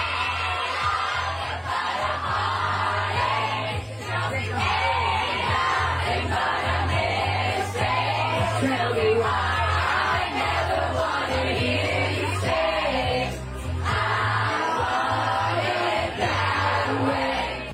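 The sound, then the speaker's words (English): A large crowd roars and sings along together, led by a performer, over booming music, a dense, steady wall of voices that stays loud for the whole stretch with only brief dips. “He led the crowd in a sing-along.”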